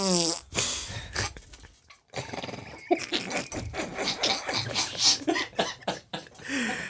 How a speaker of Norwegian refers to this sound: Det var en mannafis. Her var det mye som skjedde.